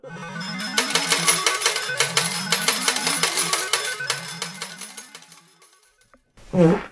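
A loud, drawn-out fart with a wavering low pitch and sputtering crackles, lasting about six seconds with an echoey ring, then a brief, sharper burst at the end.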